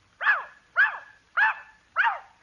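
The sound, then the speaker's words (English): A dog barks four times in a steady, evenly spaced rhythm, as if answering how much two and two is. The barks are clear, with nothing else around them. “Rover, how much is two and two?”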